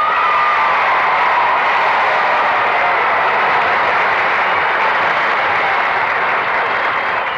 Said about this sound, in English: Well, now, that's a mighty fine round of applause. Where did you get all that energy, pretenders?